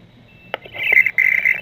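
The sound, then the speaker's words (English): A short electronic data signal from a patented acoustic smart card used to log into the web: a sharp click, then a warbling, chirpy tone burst in the upper register that pulses and stutters in two bursts with a brief gap, loud and with no talking. “So we've got a patented technology called an acoustic smart card. And when somebody uses it to log into the web, it sounds a little bit like this.”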